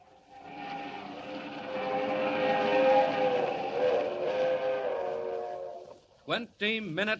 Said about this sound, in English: Roaring up the Rockies to the crossing at San Joaquin. The crack streamliner of the West Coast Railroad rushes through the dark at 80 miles an hour, destined for a watery grave at the bottom of Schooner Canyon Lake.